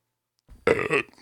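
A single loud burp starts abruptly and rumbles for about half a second with a raspy, throaty texture, then trails off into quiet.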